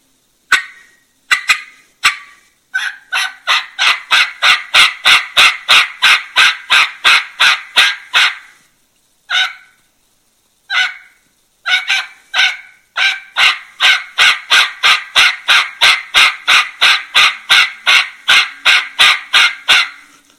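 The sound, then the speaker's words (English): A loud series of imitated turkey hen yelps with a nasal tone, repeated in steady rhythmic runs of many notes, separated by a brief pause. No one speaks. “take a little bit of jaw action out of it, I can get that nasally tone and that sound that hens have coming out of them in a natural way.”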